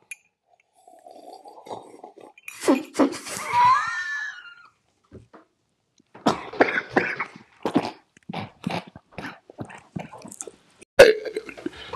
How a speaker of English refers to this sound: Let's end with a slurp. End with a slurp, as I like to do most things.